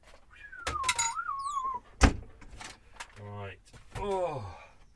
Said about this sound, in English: Oh, that's not a sound effect of a cup of tea going down. That is a real cup of tea going down. Oh. That was me slurping my tea.